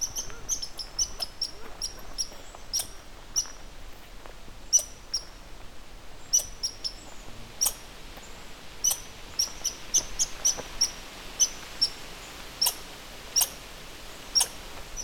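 A red squirrel chatters angrily with sharp, high-pitched chirps and squeaks in quick irregular bursts over a quiet outdoor background, moderately loud, with no one speaking.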